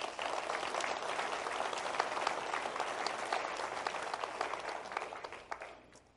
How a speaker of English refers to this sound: And if you would you just give them a round of applause?